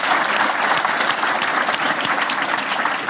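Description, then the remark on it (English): A crowd applauds steadily throughout, dense overlapping claps at a consistent loud level with no voices over the top, the sustained clatter of a full audience welcoming journalist Stephen Davis onto the stage. “With me here on the stage, Stephen Davis, a big round of applause for him.”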